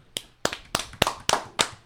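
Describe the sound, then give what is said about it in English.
Sparse clapping from a small studio audience, about seven sharp, crisp claps landing in a steady, evenly spaced rhythm, with no voices over them. “Again, that clapping sounds a lot like you and me.”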